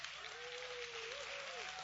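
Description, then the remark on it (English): An audience applauds the speaker's bride, who has joined him, with dense, continuous hand clapping that holds steady for about two seconds, fairly soft, with a faint sustained tone running underneath. “So you all give a hand clap for my bride.”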